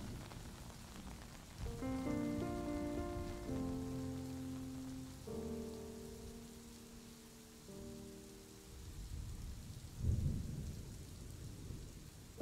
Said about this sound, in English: with your body a little cooler and your mind as quiet as can be, you watch the rest of the thunderstorm pass by.